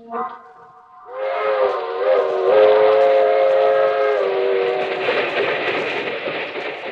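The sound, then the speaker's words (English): A passenger train's whistle blows long and loud in sustained harmonic tones over the steady rumble and clatter of the moving train, with no one speaking. “That train is the Southeast Limited. See it? Long, sleek, and powerful, clicking off the miles and the humming rails.”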